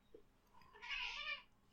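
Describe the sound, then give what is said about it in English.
A single cat meow, drawn out for about half a second, fairly high-pitched and a little strained, standing alone against a quiet background with no talking. “So does the cat. What the hell, cat?”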